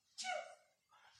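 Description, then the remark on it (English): A single sneeze bursts out suddenly with a sharp, voiced onset and trails off quickly, followed by a softer, breathy exhale a moment later. “Gesundheit.”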